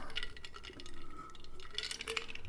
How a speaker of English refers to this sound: Sorry about that, ladies and gentlemen. I had to take a sip.